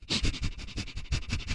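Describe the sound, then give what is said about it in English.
A person mimics his dog sniffing at a woman's ear on the bed: a quick, steady run of about eight short, breathy snuffles, with no talking. “And he's up there sniffing at her ear and her, like, are you?”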